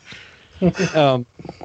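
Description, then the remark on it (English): A dog in a house gives a loud, drawn-out bark that rises into a yowling, voice-like cry lasting about half a second, followed by a few quieter short yips. “We have a Wookiee in my house that's barking.”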